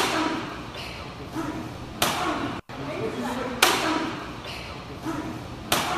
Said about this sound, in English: Good thing Larry's wearing that motorcycle helmet because she is slapping the mess out of him